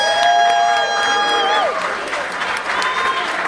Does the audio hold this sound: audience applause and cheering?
yes